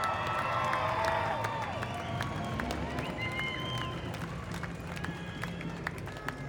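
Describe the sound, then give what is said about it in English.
An audience applauds steadily as a speaker is introduced, a dense wash of many hands clapping with scattered cheers and whoops rising above it, holding at a fairly even loudness throughout. “So, with that wonderful bit of applause that you're about to give her, put those hands together”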